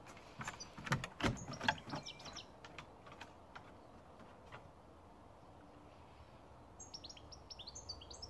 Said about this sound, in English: For me, it was the birds in the morning. The unusual sounds of birds in a foreign country.